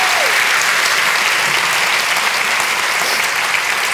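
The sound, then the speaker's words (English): A large audience in a packed theatre claps steadily at the launch of Clem Ford's book Boys Will Be Boys, a dense, loud wash of applause for several seconds without any speech over it. “Give yourself a round of applause. Give her a round of applause.”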